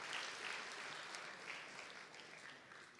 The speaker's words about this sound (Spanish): Dar un aplauso, hermanos, que están sudando aquí.